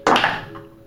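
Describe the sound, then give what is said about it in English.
A large die, rolled for a perception check in a game, lands with a solid thunk, then tumbles in a couple of quick, softer knocks that fade away, coming up six. No one speaks. “We're gonna use big dice for this one.”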